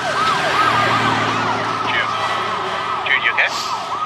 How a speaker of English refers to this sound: Yeah, sorry. Just a whole bunch of fire trucks blew by.